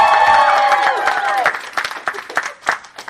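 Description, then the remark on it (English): A crowd cheers and whoops loudly over dense applause for the film Vampire's Kiss in a crowd vote, the high shouts fading after about a second and a half into scattered, uneven clapping. “Throw it to the crowd?”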